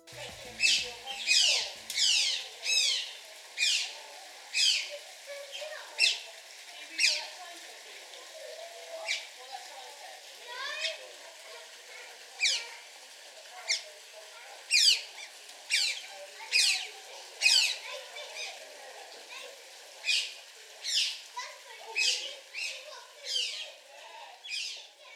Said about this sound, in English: What you just heard was the delightful sound of two otters squeaking playfully together in an unnamed wildlife park.